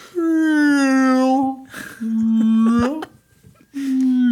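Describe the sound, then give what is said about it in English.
A voice imitates the eerie purge siren with three long, low, droning tones, each held at a fairly steady pitch, with brief wavering slides and short breaks between them. “No, I think I saw some video of it, and it was just like police cars driving around going like, I'm not going to imitate the purge noise more. All right, let me give it another try.”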